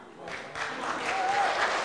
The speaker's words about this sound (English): Listen, listen. I know you're clapping. Listen.